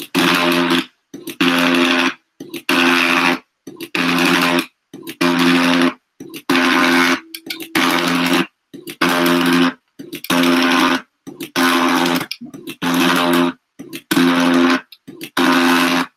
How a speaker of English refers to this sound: Boy, that's fascinating audio. Each time we were hearing that, you were hearing the click of the shutter, the advancement of the film, and then click of the shutter, advancement of film, click of the shutter.